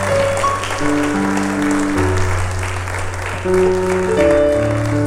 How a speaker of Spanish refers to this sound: Dale un aplauso al que vive y al que reina para siempre.